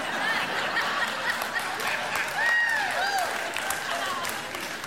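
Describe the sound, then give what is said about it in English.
An audience breaks into steady applause mixed with scattered laughter and a few whoops, the clapping dense and sustained for several seconds. “That's probably the best applause I'll get all day.”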